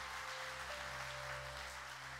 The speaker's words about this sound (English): Let's give him a great big hand clap today. That was awesome.